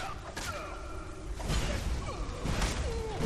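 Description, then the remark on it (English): Three heavy swings of an orcish mace whoosh and strike ghosts in a fight, spaced about a second apart, over eerie wavering tones in the background; no one speaks. “A few swings of my orcish soul snares mace takes them down.”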